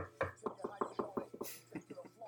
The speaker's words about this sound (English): Knock on the West Wing, because the West Wing's all wood.